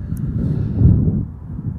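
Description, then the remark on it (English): Cold January wind gusting and buffeting the microphone outdoors against a barren backdrop, a steady low rumbling roar that swells briefly in the middle before easing slightly, with no voices. “Cold, windy, and yet, praise the Lord, it's not too difficult, or hasn't been too difficult for me to come up today and speak to you all.”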